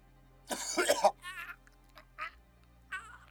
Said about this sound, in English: Coughing and hysterical, he can't manage to escape its impossible grip. Claws digging bloody fissures into his neck.